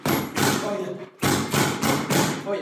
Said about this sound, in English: And this is how you hit the Cobra bag.